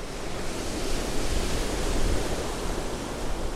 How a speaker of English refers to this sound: The next morning, a thick blanket of clouds makes for a gray, wet morning as winds pull cold air from the top of the world storm to churn the sea.